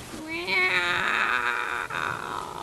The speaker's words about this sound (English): It's okay, kitty. It's fine.